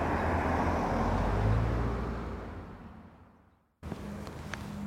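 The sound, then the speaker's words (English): Loud road traffic rushes past, a broad roar that fades steadily over about three seconds and drops to a quieter outdoor background with faint high bird chirps. “When it goes quiet from traffic and you just hear the birds, it's wonderful.”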